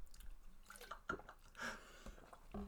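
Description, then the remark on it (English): Wet crunching of food being chewed, with several irregular bites and squishes over a few seconds, fairly quiet and with no talking. “For our audio listeners out there that you heard the crunch”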